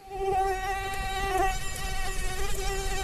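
A steady mosquito whine drones continuously for a few seconds, its thin high-pitched buzz wavering slightly in pitch as the insect hovers. No one speaks.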